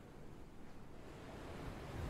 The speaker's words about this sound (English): Nanette puts the shell up to her ear. You hear crashing ocean waves.